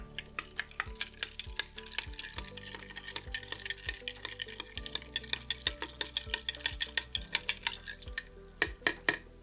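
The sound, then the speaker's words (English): A bright blue Blue Lagoon cocktail being stirred in a glass: a quick, steady run of bright clinks and ticks as the spoon knocks against ice and glass, with a few sharper taps at the end and no talking. “We're going to stir this in.”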